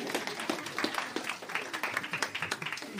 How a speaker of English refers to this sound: Very good. I think you can give yourselves a round of applause.